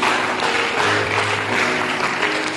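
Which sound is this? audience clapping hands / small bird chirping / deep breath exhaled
audience clapping hands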